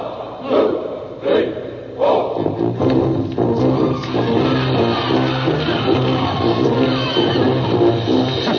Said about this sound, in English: You know, you're going, listen to the crowd. The crowd is cheering, of course. Here they go now.